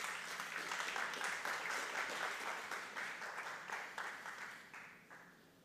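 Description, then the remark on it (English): A crowd applauds, many hands clapping in a dense, steady patter that holds strong for several seconds before gradually thinning and fading toward the end. “You can clap to that.”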